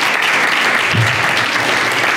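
A live studio audience on the show The Wolf's Den applauds a guest steadily, a dense, even wash of clapping at a loud level for the full couple of seconds, with no voices over it.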